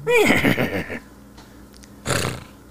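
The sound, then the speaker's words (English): A loud whinny of Epona, the horse from the Zelda video game, with a quavering, descending pitch lasts about a second, followed after a short pause by a brief breathy snort. “The horse from Zelda keeps showing up.”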